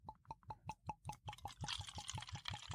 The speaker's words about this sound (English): I like this bottle because it makes fun pouring noises. I'm going to do that. That was yours. Now I'm going to do mine. All right, fun pouring noises. Here we go.